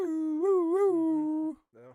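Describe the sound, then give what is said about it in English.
A person vocally imitates an air horn with one loud, sustained nasal tone lasting about a second and a half, wavering in pitch like a howling, wounded dog, followed by a brief shorter yelp. “It sounded like a wounded dog.”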